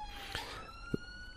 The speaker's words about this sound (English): That siren even is quite foreboding, isn't it, in the distance.